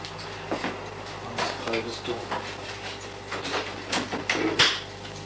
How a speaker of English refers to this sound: I'll just close this door